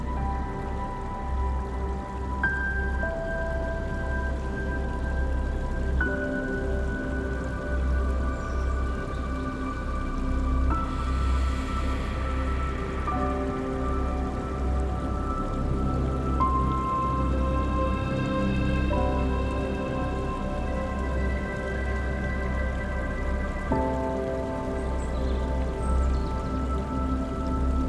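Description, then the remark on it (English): A mountain stream flows steadily over rocks, a continuous trickling, splashing texture with no pauses, accompanied by soft sustained tones in the background. “And while the cool breeze softly blows, imagine a small mountain stream filled with rocks and cool water running alongside your bed.”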